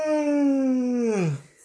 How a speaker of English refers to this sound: I'm not actually yawning. I'm fake yawning. Yeah, but a fake yawn is still a yawn.